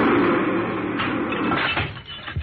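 subway train passing

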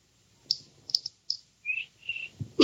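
cricket chirping

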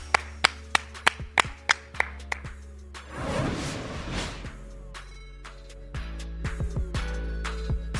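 clapping

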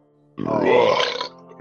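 loud burp

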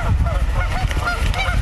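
geese honking

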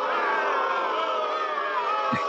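crowd cheering sound effect

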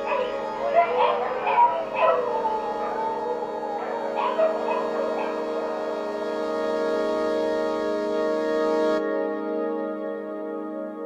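dogs barking and whimpering

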